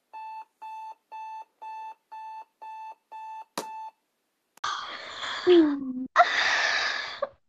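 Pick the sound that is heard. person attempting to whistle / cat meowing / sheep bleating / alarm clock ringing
alarm clock ringing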